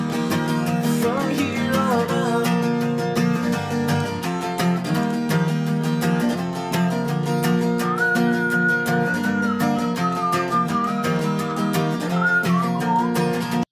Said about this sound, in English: I love the whistling. That's fucking crazy.